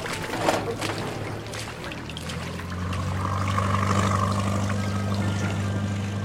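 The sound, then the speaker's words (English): A small motorboat engine starts up and settles into a steady low drone, growing louder as the craft pulls away, with water splashing and churning around the hull. “Cousins, you're coxswain. Get us moving!”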